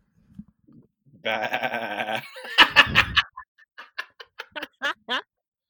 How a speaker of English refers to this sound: Baby goat.